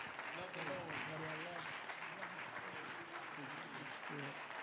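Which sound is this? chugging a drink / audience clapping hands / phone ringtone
audience clapping hands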